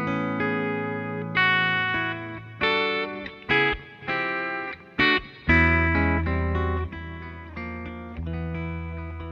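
An electric guitar, a Telecaster played on its bridge pickup, plays a short phrase of ringing chords and single notes, bright, with a little reverb and delay trailing each note; no one speaks.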